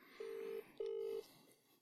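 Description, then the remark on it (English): A telephone ringback tone on a call to the caller's father: two short, steady electronic burrs in quick succession, then a pause, heard clearly over a faint hiss on the line. No one speaks. “It's ringing.”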